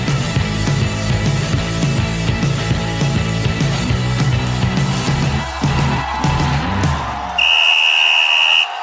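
A loud crowd murmurs and roars with a busy, thumping background, then one long, shrill, steady whistle blast rings out at the end as the noise drops away.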